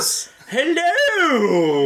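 A dog whimpers in one drawn-out, wavering whine that rises and then slowly falls, clear, after a brief hiss at the start.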